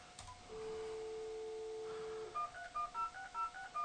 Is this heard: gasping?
no